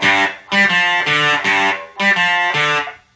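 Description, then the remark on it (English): Electric guitar chords played through a Satisfaction fuzz pedal ring out in a loud, buzzy, saturated tone, struck in a repeating rhythm of about six sustained hits with a short pause midway, no voices. “This is the Satisfaction.”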